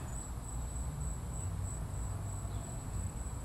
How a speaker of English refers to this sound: You hear the crickets?